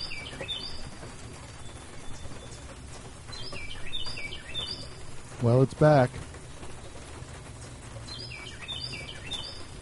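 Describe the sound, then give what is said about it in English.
A bird chirps in short, high, repeated bursts at the start, middle and end, with a steady rain-like hiss behind it and a man briefly speaking partway through. “God damn it, that bird.”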